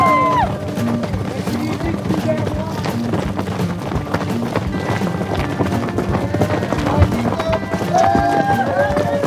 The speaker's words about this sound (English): So all the runners get down into this wash first, come up into this barren desert, and pretty quick, on your right, come the horses. Yeah, it's kind of crazy.